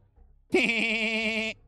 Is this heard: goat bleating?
yes